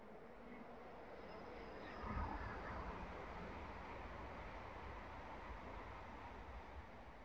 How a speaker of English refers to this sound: I'm so sorry about the train, guys.